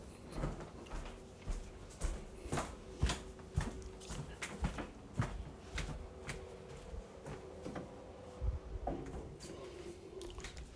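A man closes his wife's door amid a series of sharp clicks and knocks, with shuffling movement and a faint steady hum underneath; no one speaks.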